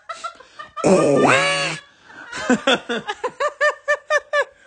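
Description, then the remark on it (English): A voice imitates Donald Duck, squawking in a raspy, quacking babble: one long strained squawk followed by a rapid string of about a dozen short, rhythmic quacky syllables, loud. “I was going to try to do the cadence in a Donald Duck.”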